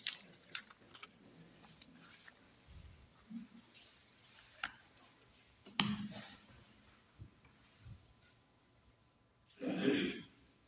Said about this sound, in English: The rustling of pages has stopped. I'm impressed.